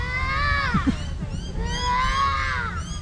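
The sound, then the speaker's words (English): In a wild play garden, a young girl's voice mimics bird calls with two long, high-pitched sweeping cries, the first gliding downward, the second rising then falling, over a steady low background rumble. “As we move through the wild play garden, I hear a little girl making some strange sounds.”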